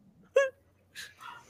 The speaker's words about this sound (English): I got dogs barking in the back.